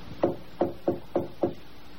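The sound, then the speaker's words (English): Five soft, evenly spaced taps on Rachel Howell's wooden door in the dead of night, light, in a quick steady rhythm against a quiet background with no voices. “before picking up the narrative where he'd left off, with a soft tapping on Rachel Howell's door in the dead of night.”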